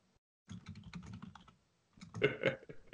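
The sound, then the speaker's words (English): Rapid clicking of keys on a computer keyboard in two bursts of quick, uneven keystrokes separated by a brief pause, with no voices. “Sorry, I'm kind of typing them away as we go.”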